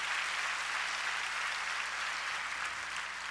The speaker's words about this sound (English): If you're glad about that, clap your hands and give praise to God.